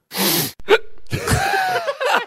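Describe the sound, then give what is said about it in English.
A sharp, breathy sniff, then a quick gulping hiccup, followed by a stretch of breathy, voiced noise, fairly loud with no speech. “The first one I want to get off is a sniff followed by a hiccup.”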